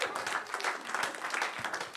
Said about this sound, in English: Clap for the Lord Jesus.